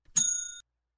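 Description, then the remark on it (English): A single bright bell ding, hit as a spoiler warning before movie details are discussed, with a sharp metallic strike, its clear high tones ringing on briefly before cutting off after about half a second, alone with no talking. “It's the second movie version of this, but if you haven't seen any of it, I'm going to hit the bell here.”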